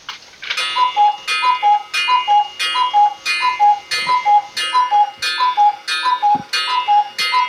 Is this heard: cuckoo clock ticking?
yes